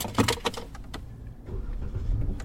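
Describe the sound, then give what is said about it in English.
A rental car: a quick series of sharp clicks and rattles, like keys or a door mechanism, then a steady low rumble settling in. No one speaks. “It is the rental car, which you can take absolutely anywhere.”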